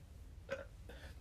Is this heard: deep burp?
yes